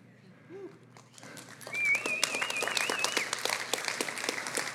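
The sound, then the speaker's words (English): A crowd breaks into applause that swells quickly into dense, steady clapping, with a whistle rising and wavering above it and a few voices mixed in. “I don't know why you're applauding.”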